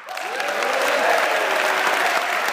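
A room full of people claps steadily for an award winner being honored, a dense and sustained wash of applause that stays loud and even from start to finish, with no voices standing out.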